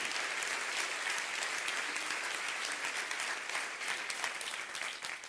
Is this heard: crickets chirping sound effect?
no